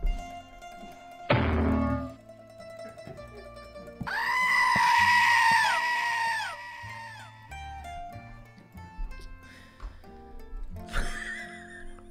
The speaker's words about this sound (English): His scream echoed through the entire gym. Can you make that happen? Yeah.